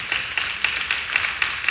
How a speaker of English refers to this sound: I don't want to, yes, go ahead and clap.